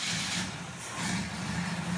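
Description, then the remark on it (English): The engine of a green 1950 Oldsmobile Model 88 convertible idles and rumbles steadily, a low continuous drone with a hissy mechanical wash on top, fairly loud for about two seconds with no voices. “He traded two of his black and white paintings for a green 1950 Oldsmobile Model 88 convertible, which is also called the Rocket.”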